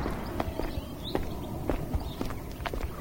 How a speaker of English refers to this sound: So you can probably hear we're walking back up towards the main road again as the traffic noise increases, and we're taking a left, again keeping rugby school on our right.